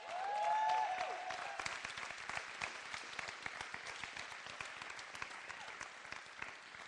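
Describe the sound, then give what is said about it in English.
Sustained applause from a sizable crowd celebrating a couple's one-year anniversary: dense clapping with a brief whistle or cheer near the start, holding steady for several seconds. “And I also want, if we could give one more grand applause.”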